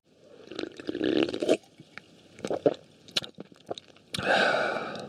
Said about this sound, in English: Speaking of things that come from somewhere, let's take another sip of this Swedish delight.